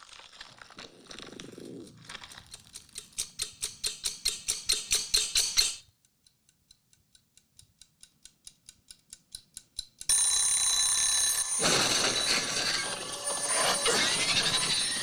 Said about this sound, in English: Like even a little timer like that's gonna totally set them off.